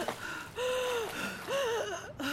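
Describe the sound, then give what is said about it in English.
Breathless gasping for air in two loud bursts as two characters surface from underwater, the voiced gasps rising and falling in pitch between quick, ragged intakes of breath. “Kip and Cordy surface, gasping for air.”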